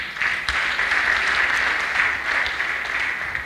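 An audience claps steadily, a dense wash of many hands with no pause, holding a fairly even loudness throughout. No one speaks over it.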